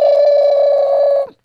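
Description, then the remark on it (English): A telephone rings with one steady, loud electronic tone held for just over a second, then breaks off briefly before the next ring begins. No one speaks. “One second. I gotta answer the phone.”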